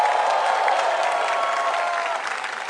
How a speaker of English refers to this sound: Give the Lord another clap of prayer here.